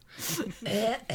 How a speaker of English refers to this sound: The old almond cough.